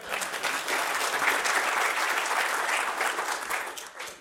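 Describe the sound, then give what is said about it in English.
A crowd of people claps steadily for about four seconds in a round of applause for a presenter, a dense, even patter of many hands that stays loud throughout and tapers slightly at the very end. “A round of applause for Craig.”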